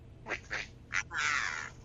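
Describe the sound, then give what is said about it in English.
Four short, high rubbery squeaks, made while cleaning off a necklace, that sound like a duck quacking, the last one longer and drawn out, with no talking. “I'm hearing duck noises.”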